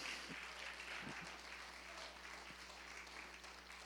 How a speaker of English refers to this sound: Can somebody say amen? Go ahead. Give the word of God a hand clap of praise.